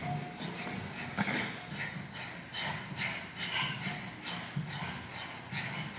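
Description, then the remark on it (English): Rapid, forceful breath of fire panting, done in a yoga stretch pose with legs and chest lifted about six inches, repeats in a steady rhythm for the whole stretch, with no talking over it. “Stretch pose, extending the legs all the way out in front, lifting up the legs and the chest just about 6 inches and beginning breath of fire or panting like a dog.”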